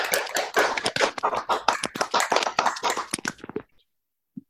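An audience applauds to welcome a guest at a literary event with writers and poets, with dense, brisk clapping for about three and a half seconds, then it thins to a few scattered claps and fades to silence.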